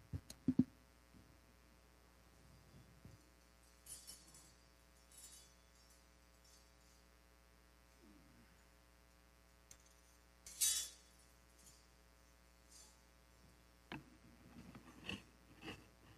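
Small metal keys clink and jingle in scattered bursts as a key ring is changed out, with light clicks and scraping between them, and one sharper rattle of metal partway through. No one speaks.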